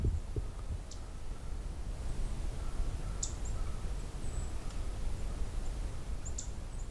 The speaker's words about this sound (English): Yeah, it's black-throated green that's actually doing the vocalizing.